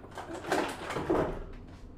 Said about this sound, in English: Oh. Don't mind me, just getting some water from the fridge.